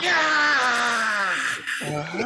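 A man lets out a loud, drawn-out scream of fright that slides downward in pitch, breaks off briefly, then resumes with a shorter, rising yelp.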